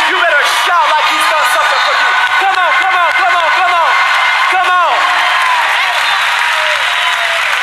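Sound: audience shouting praise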